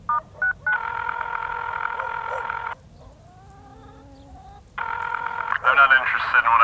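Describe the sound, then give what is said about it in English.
Two quick phone keypad beeps followed by a long steady electronic dial tone, a pause with faint voices, then another tone that gives way to a voice, fairly loud. “I thought about redialing, but, like, a bit weird, you know?”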